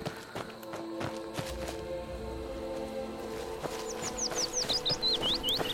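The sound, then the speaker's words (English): Birds chirp in a video game in a quick series of high, sweeping tweets during the second half, over a steady ambient hum with soft footstep-like thuds and rustling. “Rabbits. Birds. I feel like morning's coming.”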